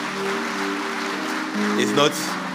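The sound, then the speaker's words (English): An audience claps their hands together in a steady, dense wash of applause, with sustained tonal voices or music humming underneath throughout. “Please clap your hands one more time.”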